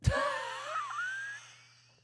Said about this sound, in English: I'm yawning. Sorry. I'm so sorry.